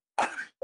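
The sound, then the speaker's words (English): A single sharp sneeze bursts out with a breathy, hissing spray, followed a moment later by a brief, softer voiced sound. No one speaks. “Bless you.”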